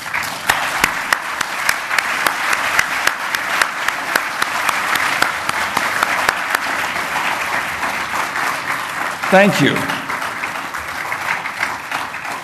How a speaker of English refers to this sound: You hear the applause.